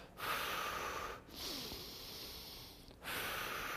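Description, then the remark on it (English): Slow, forceful breaths pushed out through the nose: three long, hissing exhales in a row with brief pauses between, fairly loud, with no talking. “That's what that is actually talking about, that they're slowing the breath out of their nose, that they're trying to calm down, trying not to become angry.”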